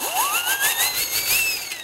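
A whistle glides steadily upward in pitch from low to high over about two seconds, a thin continuous tone riding over a loud, pulsing hiss.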